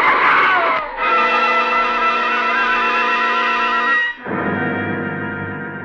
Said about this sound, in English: There's a helpless skidding sensation as the car lurches across the wet pavement, and then a sickening thud.